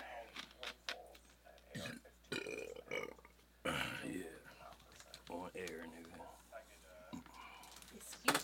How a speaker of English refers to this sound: Air Burp in the building. Excuse me.